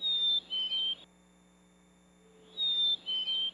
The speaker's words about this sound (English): And that's a black-capped chickadee.